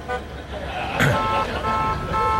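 Busy street traffic with a steady rumble of engines, while car horns blare in long, overlapping honks throughout, one louder burst standing out near the middle.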